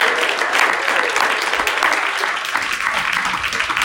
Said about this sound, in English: Yeah, give him a clap up, y'all.